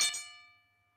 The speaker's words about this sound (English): So you know what? Maestro. Ring that bell.